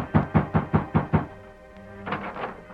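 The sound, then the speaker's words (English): Six quick, evenly spaced knocks on the wooden door of a ranch house, fairly loud, followed by a brief lull and then softer shuffling or creaking sounds. “The masked man halted in front of Amos Todd's ranch house, dismounted and rapped on the door.”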